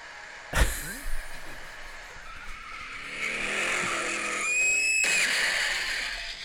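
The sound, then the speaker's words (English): A sound effect of a car crashing into a building: a sharp, heavy impact bang near the start, then rumbling car noise building up, with a loud high-pitched brake squeal piercing through for about a second near the end. “And it just, you hear the brakes squealing and it slams into the building.”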